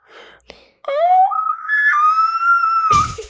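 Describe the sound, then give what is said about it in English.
A person imitates an elk bugle with one long, loud whistling squeal that sweeps upward and holds a high, strained pitch for about two seconds, ending in a brief rough burst. “That was actually my bad bugle, but I won't try to repeat it.”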